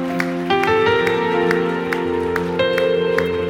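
A church audience claps together as a clap offering to the Lord. The claps come in a steady rhythm, roughly two per second, over loud sustained keyboard or organ chords. No one speaks.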